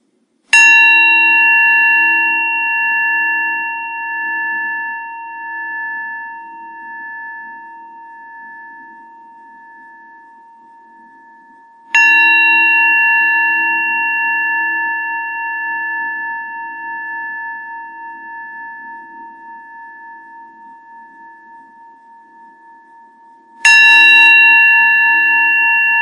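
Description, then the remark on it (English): A meditation bell is struck three times, about twelve seconds apart, each clear ring sustaining and slowly fading into a long, shimmering hum before the next strike. No voices are heard. “And instead, we'll begin by just hearing the sound of the bell and just practice receiving the sound of the bell.”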